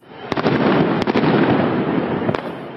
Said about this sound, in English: Police fired tear gas and flashbang grenades to disperse large crowds in the capital, Athens.